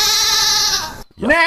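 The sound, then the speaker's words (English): A goat lets out a long, loud, quavering bleat, followed after a brief gap by a second, rising bleat. “even if you are in Atlanta herding goats at the moment. So, and I even have that soundbite here that...”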